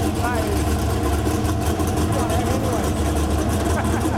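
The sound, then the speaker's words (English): A powerful hypercar engine idles loudly, its deep, uneven exhaust burble throbbing steadily like a motorboat, with faint voices murmuring underneath. “It sounds like a motorboat.”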